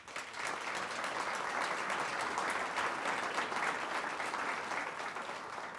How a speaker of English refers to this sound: As you might have gathered from the applause, two of those are here in Ohio, Central State University and Wilberforce University.